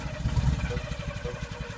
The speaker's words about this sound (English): All right, so Fred drove off in his brand new car, which he named... The What If Mobile.